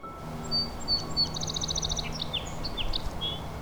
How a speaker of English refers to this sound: The bouncy banter of the song sparrow.